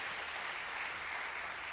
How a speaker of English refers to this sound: Let's give a round of applause to all those decisions.